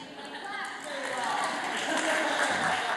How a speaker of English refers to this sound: All right. Well, now that we got the applause, let's go.